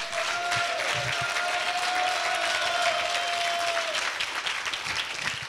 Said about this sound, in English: Amen and amen. Can you give the Lord one more big hand clap? Come on.